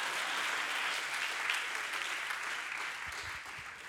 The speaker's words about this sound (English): Come on, everybody just clap their hands, give praise to the Lord. While I take it away.